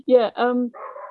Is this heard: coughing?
no